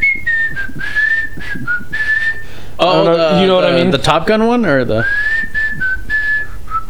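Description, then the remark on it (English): A person whistles a song's melody in clear, wavering pure notes at the start and end, broken midway by a burst of animated talking. “Because it was, like, the whistling song, the...”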